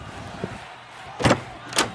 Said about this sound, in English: The door.